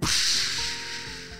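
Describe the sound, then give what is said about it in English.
A single loud, rushing whoosh of a giant wave made by a whale's tail, bright and hissy at the start, then gradually thinning and fading over about a second and a half, with no voices. “With one giant wave of his tail, a wave came from his tail.”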